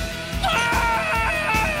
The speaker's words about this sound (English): And what do most people do? They scream. APG syndrome. Like this guy.